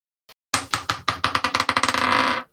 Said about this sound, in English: Should we move on to the rolling of the dice? Let's do it. Okay.